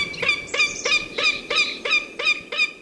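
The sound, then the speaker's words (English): A northern goshawk calls in a rapid series of harsh, nasal cackling notes, about nine in a row at a steady rhythm, loud with no other sounds around. “Up first, the northern goshawk.”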